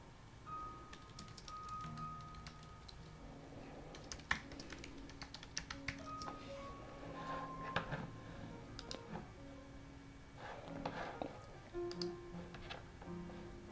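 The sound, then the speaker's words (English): Steady keyboard typing as the title of a class is typed into Instagram, a rapid string of light clicks and taps with short pauses between bursts and faint tonal hum in the background. “I'm just typing in the title on IG of the class.”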